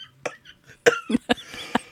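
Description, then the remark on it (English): A man coughs in a rapid series of harsh bursts, several sharp coughs in under two seconds with brief gaps between them. “That's why you're over there coughing.”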